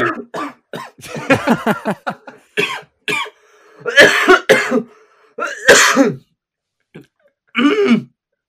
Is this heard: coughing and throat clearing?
yes